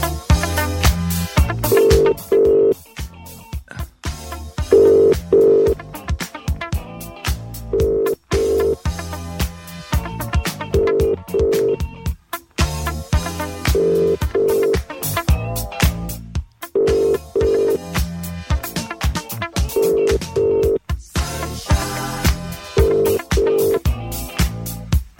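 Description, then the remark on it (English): A phone line rings out again and again, a steady two-part ringback tone repeating every few seconds with no answer, set against a dense, busy background. “It was ringing. He didn't want to answer, did he?”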